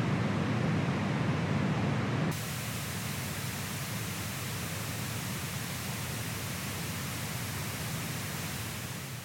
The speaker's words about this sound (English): Here we have pink noise.